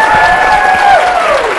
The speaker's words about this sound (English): And one of our favorite people joining us, everyone applaud for James Dashner